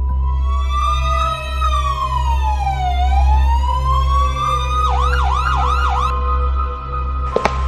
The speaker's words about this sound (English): And then a police van passes by.